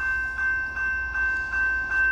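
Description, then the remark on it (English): A slow-moving train, looking like an intermodal oil train, rolls past with a steady, rhythmic clatter of wheels over rail joints, several evenly spaced clicks under a sustained metallic whine, moderately loud. “Unless this is another train.”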